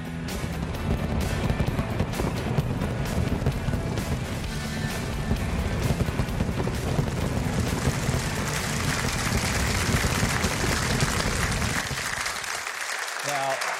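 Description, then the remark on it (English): A dense, continuous barrage of fireworks explosions at a large fireworks show, booming and crackling nonstop for over ten seconds before the din abruptly cuts off. “That is some fireworks.”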